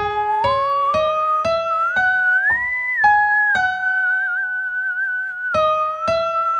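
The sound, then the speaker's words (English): A steady, sliding whistle imitates a theremin melody, gliding up and back down, over evenly paced piano chords struck about every half second, recreating a song's theremin lines with piano and whistling. No one speaks. “So I'll try to recreate the lines that they played, but I'll do it with the piano and by whistling, which you heard me doing just a second ago.”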